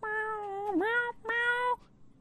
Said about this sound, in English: He's got... he's got a dead bird right there. Uh-oh. And he's talking to it. He's like... Oh, he's meowing at it. Yeah, he's just going, meow.